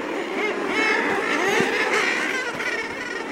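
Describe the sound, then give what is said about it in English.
A dense, continuous chorus of common murre calls, many harsh, growling bird voices overlapping at steady loudness throughout, like a crowded seabird colony. “The common murre is among them.”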